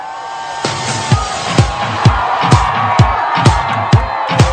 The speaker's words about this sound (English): Celebrations erupted on the steps of the Supreme Court. Right after the decision was handed down.